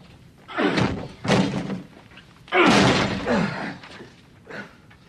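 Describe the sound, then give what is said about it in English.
Several heavy, booming thuds strike a locked door above a shop at uneven intervals, loud, as someone repeatedly rams it to force it open, with a faint splintering edge to the blows. “The door's locked.”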